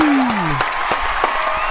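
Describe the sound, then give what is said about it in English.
A short burst of applause and cheering from an applause section welcoming a guest onto a show, with scattered claps and a whistling, sliding voice rising above the steady roar. “Yeah, we have a whole applause section.”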